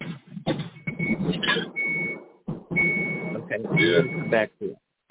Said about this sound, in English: because that beeping in the background is going to make it so I can't hear.